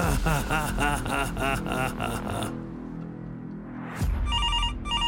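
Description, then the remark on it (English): Low, rumbling vocal sounds fill the first half, then after a brief lull a telephone starts ringing with a bright electronic tone in short repeated pulses, fairly loud. “I'm ringing from Sally Noggin.”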